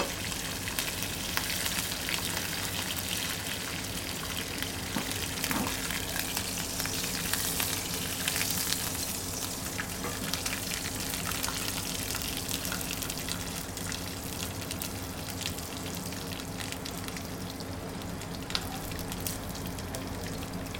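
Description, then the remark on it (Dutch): Steady, dense sizzling and bubbling of food frying in a hot pan as its moisture cooks out, a constant crackle with occasional sharper pops, fairly loud, with no one talking. “Op een gegeven moment ga je zien dat de bubbels verdwijnen en dan weet je gewoon, het vocht is er ook uit.”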